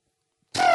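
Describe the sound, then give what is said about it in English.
A voice imitates a doorbell with a single loud, steady, buzzy tone that starts abruptly after about half a second of silence and is cut off while still sounding. “I should really do a better doorbell sound.”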